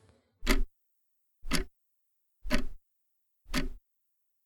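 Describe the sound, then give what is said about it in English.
A clock with a mechanical second hand ticks steadily, about once per second, stopping at each little bar. Each sharp tick is distinct, with silence between beats and no voices. “It's one of those clocks with the mechanical second hand, stopping at each little bar.”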